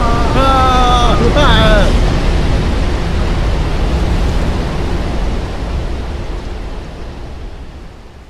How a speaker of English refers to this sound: Oh no. Oh no. It's a giant wave.